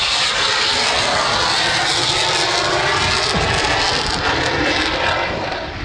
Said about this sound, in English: It's a T-38. I think an airplane just went past. That's right. I believe you're right.